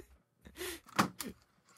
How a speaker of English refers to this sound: I just slammed my keyboard.